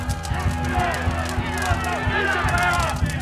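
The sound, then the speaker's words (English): A dense mob roars and shouts continuously while rhythmic thumps of feet stomping and fists pounding walls pulse underneath, loud, filling the scene with agitated noise. “There's the pulsing sound of feet stomping, fists pounding walls, and a mob shouting.”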